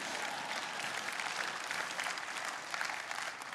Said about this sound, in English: And so I want to look, that was an interesting clap, all right?